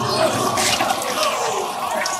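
A toilet flushes, a steady rushing swirl of water that holds at a fairly loud level for a couple of seconds without fading.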